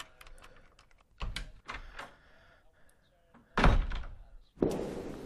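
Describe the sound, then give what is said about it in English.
A room door in a mansion is worked open and shut: a series of heavy wooden thunks and clatters, two louder booming knocks standing out, with faint voices murmuring underneath. “This, yep, let's open that door.”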